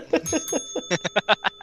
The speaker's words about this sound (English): Boom! Fucking ring the bell.